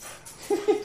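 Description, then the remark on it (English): A dog lets out a few quick, high whimpering yelps in close succession, moderately loud over a faint background hiss, with no one talking. “I'm gonna yell at my dog.”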